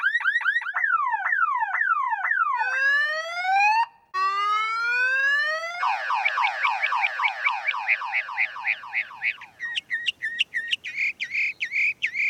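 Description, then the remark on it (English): A mockingbird rapidly cycles through electronic-sounding phrases: zigzagging warbles, rising sweeps, fast trills, then sharp repeated beeps, closely mimicking a car alarm with its rising and falling tones. Loud and continuous with no voices. “The particular mockingbirds that we have at times will sound like car alarms with the rising and falling tones and the beep beep.”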